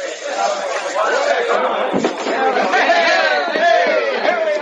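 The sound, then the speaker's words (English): Dense crowd chatter on a dock in the dark as the gangplank is lowered. Many overlapping voices talk and call out at once in a steady, loud babble that never drops away, with no single speaker standing out. “I don't want to lose you in that crowd in the dark.”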